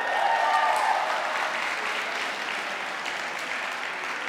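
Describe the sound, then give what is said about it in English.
An audience claps and cheers steadily at a speaker's news of another baby on the way, with a few high whoops rising over the applause at the start before it settles into a dense, even patter that slowly tapers. “I'm really not sure why you're all cheering, because no, we're drowning.”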